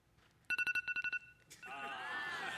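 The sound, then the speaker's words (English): An alarm clock rings in a quick run of about eight sharp, high, evenly spaced beeps for under a second, then gives way to a dense, steady hissing noise. “It is your alarm clock.”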